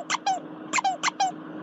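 squeaky toy squeaking

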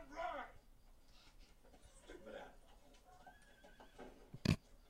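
horse neighing

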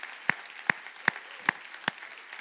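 audience applause

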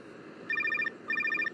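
phone ringing

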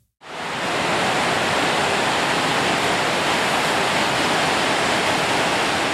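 waterfall rushing water

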